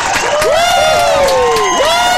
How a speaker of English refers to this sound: And I listen to the crowd at the end of this clip, though. The crowd goes wild.